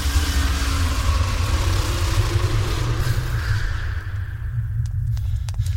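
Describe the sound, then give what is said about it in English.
A heavy bus engine rumbles loudly and revs, its deep drone pulling away and fading slightly toward the end, with a few faint clicks near the close. “Hail to the bus driver, man.”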